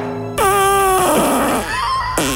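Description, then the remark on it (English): The eighth in a counted series of farts: a loud, drawn-out fart lasting about two seconds, starting as a steady, squeaky, horn-like tone, breaking into a rough sputter, then ending on a higher squeal. “Fart number eight.”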